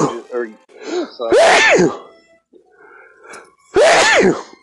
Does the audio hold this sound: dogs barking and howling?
no